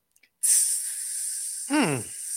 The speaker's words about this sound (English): You're like, who just opened a sparkling water? Nope, that's a snake.